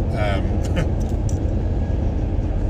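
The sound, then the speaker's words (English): A very large truck rumbles right alongside on a highway, weaving in and out, its deep, steady roar blending with continuous road noise from start to finish, loud and unbroken. “There's a very large truck right next to me, kind of weaving in and out.”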